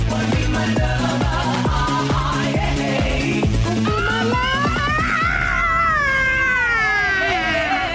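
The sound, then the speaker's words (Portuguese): A woman screams in long, loud, wavering wails that rise and fall, heard over a steady rhythmic musical beat that gives way to the screaming partway through. “Chega dessas malas gritando, meu amigo.”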